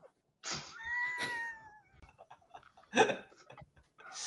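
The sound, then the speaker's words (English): A cat lets out a long, drawn-out meow that rises and then slowly falls, followed by a couple of brief, sharper bursts of noise. “I see you, pretty cat.”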